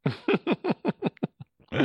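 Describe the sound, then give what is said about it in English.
A quick run of about eight rhythmic coughs from a person that taper off and grow quieter, followed by one last louder burst, with nobody talking. “Sorry, I had to cough.”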